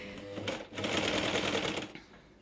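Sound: sewing machine running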